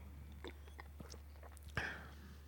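Sipping a hard kombucha made with rose hips: small wet mouth clicks and a soft swallow, with a sharper gulp near the end over a low steady hum. No one talks.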